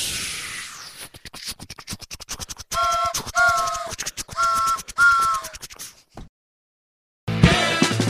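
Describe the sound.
A voice imitates a steam train: rapid, rhythmic chugging puffs build up, then four high hooting whistle calls sound over the continuing chug before it cuts off abruptly.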